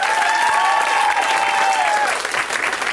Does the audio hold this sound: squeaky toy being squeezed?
no